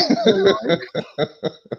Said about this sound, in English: You know when I'm like 70 and I get that one cough and I'm like, yeah, it's time.